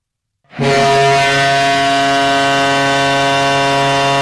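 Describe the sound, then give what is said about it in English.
A hockey game's end buzzer blares after a brief silence, as the Tampa Bay Lightning win the 2019 Stanley Cup: one loud, steady, harsh low tone rich in overtones, holding unbroken for about four seconds with no voices. “And the buzzer has sounded.”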